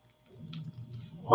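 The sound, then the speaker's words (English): A dog gives a low, rumbling grumble for about a second, then breaks into a sudden loud bark right at the end. “My dog's agreeing. The dog's hearing everything right now.”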